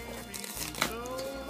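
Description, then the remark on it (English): Crinkly rustling of a small Secret Santa gift box's packaging being cut open with scissors, with one sharper snip partway through and a low steady hum underneath. “Ah, let's open it from this way. Maybe I should get better scissors next time, hmm?”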